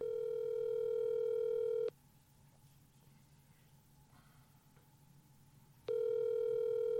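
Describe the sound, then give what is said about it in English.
Ringback of an outgoing phone call placed to a man who owns a donkey: a steady, buzzy mid-pitched tone sounds for about two seconds, falls silent for roughly four seconds, then starts again. No one speaks. “We could have just Googled donkey dicks, too, but that's less fun than calling a guy who has one.”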